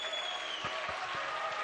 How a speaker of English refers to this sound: Clap your hands and give it up.